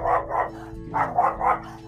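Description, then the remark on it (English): A dog barks sharply at someone leaving the house, repeatedly in two quick bursts, two barks then three, with a low steady hum underneath. “my dog is trying to attack Julia because he hates people leaving the house”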